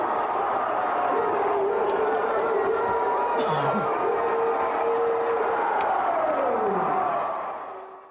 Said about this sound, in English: Well, there you hear it, Mike. The crowd going crazy. It's a really cool video, too, because they turn on some of the house lights, so you get to see the people in the balcony standing up, jumping up and down, waving their arms around.